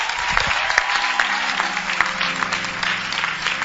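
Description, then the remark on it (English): An audience claps steadily, dense overlapping hand claps forming a continuous, fairly loud wash with a few sharper individual claps standing out. “I like your clapping.”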